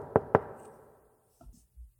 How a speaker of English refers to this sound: As I said it, there was a knock at the door.